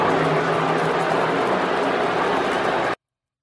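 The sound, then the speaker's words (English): A large stadium crowd of Saints fans boos Tom Brady in a loud, steady, dense roar of many voices that holds for about three seconds before cutting off abruptly. “The boos got a bit louder, just a bit louder right there.”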